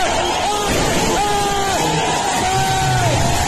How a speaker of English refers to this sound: The guy is screaming there because he just got his eye blown off.